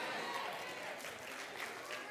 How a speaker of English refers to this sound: I want to tell somebody, I know you're clapping, but I want to tell you, it's as if it never happened.